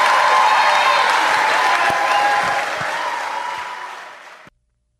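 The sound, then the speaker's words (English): An audience at the last night of the Northwest FCA Sport Camp gives a sustained round of applause for speakers who came up on short notice, a dense, steady patter that holds loud for several seconds, tapers slightly, then cuts off abruptly. “Hey, can we give them a round of applause for being up here on short notice?”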